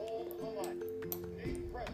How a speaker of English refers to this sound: Okay, let's get the bells up.